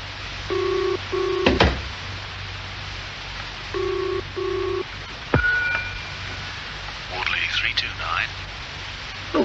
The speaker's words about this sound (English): Ah, good, it's ringing now. While you're on the phone